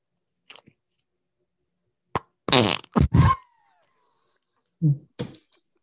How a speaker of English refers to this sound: That's so fucked. It's so bad. You need to do a 21 fart salute.